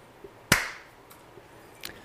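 A single sharp hand clap, loud and bright with a quick decaying tail, followed later by a fainter, smaller clap-like tap; otherwise near silence with no talking. The clap is made to sync a recording.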